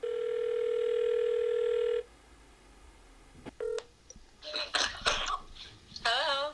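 A single steady ringback tone buzzes for about two seconds over a phone line on a call to someone's mother, then cuts off. Handling clicks, rustles and a few short throaty noises follow.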